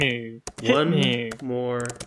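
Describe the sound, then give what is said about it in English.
A few sharp keyboard taps click at irregular moments, fairly crisp, as someone types with one hand on a computer keyboard while holding a microphone, while a voice holds long drawn-out vocal sounds over most of the moment. “I'm typing with one hand because I'm holding the microphone like a stand-up comedian.”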